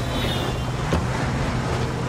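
A steady low rumble of a car on the move, engine and road noise droning evenly throughout with a soft hiss of wind, and one brief thump partway through.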